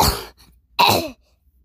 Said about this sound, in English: And then she starts coughing a whole bunch.